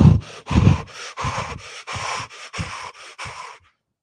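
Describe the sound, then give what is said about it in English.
A voice imitates a pilot's heavy, rapid breathing as he veers to avoid a missile: about eight loud, rasping in-and-out breaths in a steady panting rhythm, then sudden silence. No words are spoken. “And all of a sudden, you see the pilot veer to avoid the missile, and you can hear him breathing again.”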